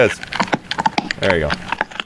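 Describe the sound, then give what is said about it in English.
A dog chomp sound effect of a dog chomping popcorn, with a quick run of sharp, crisp crunches at an irregular rhythm, fairly loud, while a person talks over and between the bites. “But yes, dogs eating popcorn, of course,”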